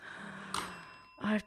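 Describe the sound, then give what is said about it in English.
A pen is accidentally dropped onto a bell, giving one sharp metallic ding whose bright, high ringing tone lingers and slowly fades, before a voice briefly cuts in at the end. “I dropped a pen on the bell.”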